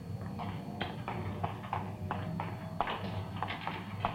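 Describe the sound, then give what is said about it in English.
A printing press runs steadily inside a print shop, its rhythmic mechanical clacks repeating several times a second over a low machine rumble, heard at moderate loudness with no voices. “Sounds like a press, doesn't it?”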